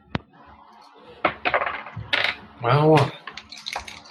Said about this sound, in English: Time to switch dice. I rolled it.